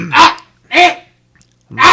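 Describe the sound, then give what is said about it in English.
A dog gives three loud, raspy bark-like coughs. The first two come in quick succession, and the third follows after a short pause. No one speaks. “There it is. It's a coughing dog.”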